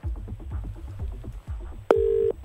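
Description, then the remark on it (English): A phone call to someone's dad being placed: a quick series of rhythmic electronic pulses, then a single steady tone that holds for a moment before cutting off, fairly loud, with no voices. “I guess you better call your dad.”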